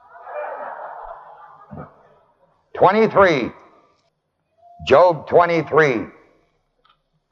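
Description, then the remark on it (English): Thin India-paper Bible pages rustle softly for about a second while turning to chapter 23 of Job, ending in a small tap, before a voice speaks a couple of short phrases. “Sometimes this India paper sticks together.”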